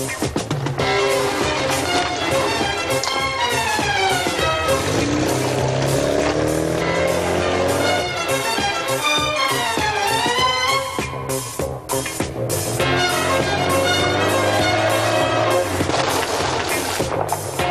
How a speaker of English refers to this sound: Here's one of my favorite scenes featured in the trailer when a person gets in his car, in their car, to drive 50 or so feet to drop mail in the mailbox.